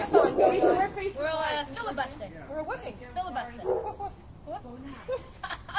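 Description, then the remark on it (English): Dogs bark and yelp in short, repeated bursts at a dog party, mixed with people talking and chuckling in the background. “We're having a dog party, apparently.”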